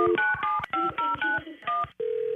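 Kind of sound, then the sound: signal or alarm, telephone keypad dialing tones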